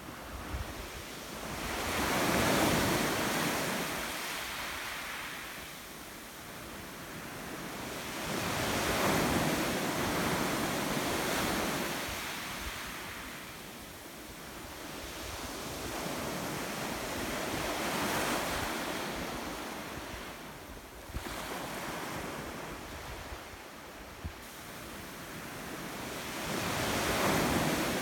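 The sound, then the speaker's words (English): Waves roll onto a beach in Devon in slow, broad surges, each swelling into a hiss of surf and ebbing away, repeating about every five to eight seconds. Steady wind noise runs underneath, with no voices. “Now, it's that time to take a short moment to relax and listen to the sounds of waves rolling onto a beach in Devon.”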